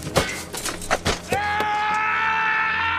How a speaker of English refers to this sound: Yes, in the second movie, he is kicking a helmet and he breaks his toe. And the scream you hear is his actual scream because he broke his toe.